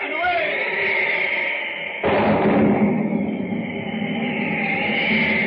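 Steady, rushing noise of a storm at sea is broken by a sudden loud crash of thunder following lightning, rolling on as a heavy, rumbling roar to the end.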